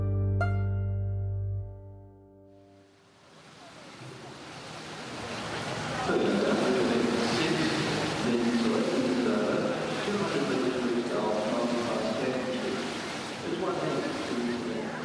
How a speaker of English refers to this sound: But first, let's go to the Sydney 2000 Paralympic pool.